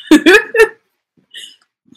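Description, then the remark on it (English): A dog makes three short, rough growling vocalizations, then after a brief pause lets out a faint, high-pitched whine. “trying to growl at me and then whines.”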